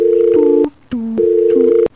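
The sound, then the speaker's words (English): A loud telephone dial tone hums steadily, broken by sharp clicks into three stretches, with a second lower tone sliding in and out beneath it. No one speaks. “Well, listen to that phone.”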